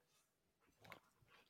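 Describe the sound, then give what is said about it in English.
Someone drinks from a glass of water: a short burst of soft wet sipping and gulping, a faint swallow, then a sudden sharp knock right at the end. “Just let me get a drink of water here.”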